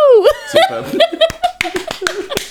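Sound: crowd cheering and clapping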